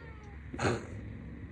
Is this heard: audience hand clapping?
no